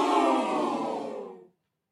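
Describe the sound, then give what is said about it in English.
A crowd boos in a dense, sustained roar of low voices lasting about a second and a half, fading a little before cutting off abruptly into silence. “Did you hear the booing?”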